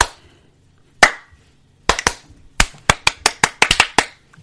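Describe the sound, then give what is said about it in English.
After a count of one, two, three, a single sharp hand clap rings out, then after a short pause a quick, uneven burst of about a dozen more crisp claps follows. The claps are loud and clear, with no talking. “Clap.”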